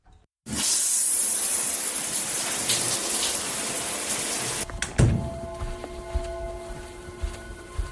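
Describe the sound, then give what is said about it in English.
A shower turns on with a steady, loud hiss of spraying water that runs for several seconds, then cuts off, followed by a soft thunk and quiet room sounds. “Now get a shower and meet me downstairs.”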